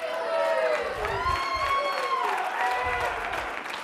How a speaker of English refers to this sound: Give God a round of applause. There you go.